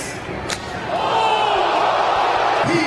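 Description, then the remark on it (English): A single sharp, loud slap cracks out early in a professional slap fighting match, then a crowd swells into cheering and shouting that carries on until the end. “If you enjoy professional slap fighting”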